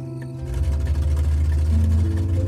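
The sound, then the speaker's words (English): A car engine rumbles steady, its low hum swelling in and then shifting pitch as the vehicle slowly turns left across traffic into a driveway, with no voices. “He slowly turned left across traffic into his driveway.”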